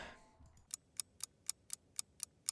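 A timer set to mark the end of 30 minutes of a game playthrough chimes with a rapid string of short, high-pitched electronic tones, about eight in a steady quick rhythm, sounding alone after a brief faint rustle at the start.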